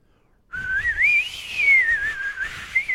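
Someone whistles a short song melody, a single clear tone gliding up and down in pitch for a couple of seconds with no talking.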